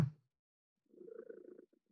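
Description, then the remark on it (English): A hungry person's stomach growls with a low, fluttering gurgle that lasts under a second, preceded by a brief soft thump. It is faint, with no talking. “Did I hear a cat purring? Yeah, I believe that's a bird. Oh, never mind, I'm wrong. That was me, sorry. Sorry, I'm hungry.”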